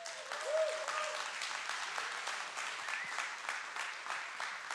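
Sustained applause from a church audience welcoming an associate pastor as she comes up to speak, a dense, steady patter of many hands clapping at even loudness, with a brief whistle or cheer near the start and no talking over it.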